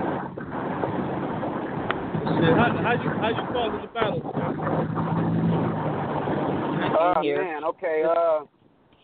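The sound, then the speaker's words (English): Steady engine and road rumble fills the cabin of a moving car, a constant low drone running beneath voices talking throughout, briefly cutting out near the end. “I'm driving, I got these headphones on.”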